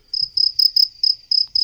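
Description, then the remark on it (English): A cricket chirps steadily, with seven quick high-pitched pulsing trills in a regular rhythm, clear with no voices present. “Again, with the cricket noises, if you don't mind.”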